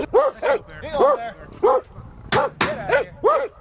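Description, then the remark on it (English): Several dogs, lined up by people, bark loudly at a bear released from a culvert trap, in a rapid, uneven volley of about eight sharp barks, some yelping and overlapping, with brief pauses between bursts. “Once all the humans and dogs are in place, the culvert door is opened, gingerly.”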